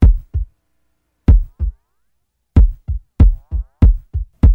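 A deep, thudding heartbeat at the start of a song, in paired lub-dub pulses, loud, pausing once before quickening into a steady run of double beats with faint tonal ringing between them.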